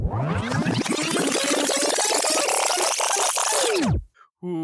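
liquid pouring

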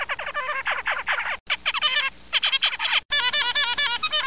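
zebra finch song

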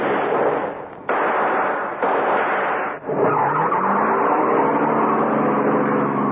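getaway car speeding off

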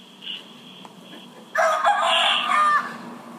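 rooster crowing

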